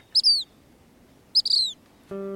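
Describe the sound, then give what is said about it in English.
A black phoebe gives two short, high, sharp calls about a second apart, clear against a quiet background, followed by a brief low steady humming tone at the end. “Another poem of Steele's was inspired by a more welcome visitor to his backyard garden, a black phoebe.”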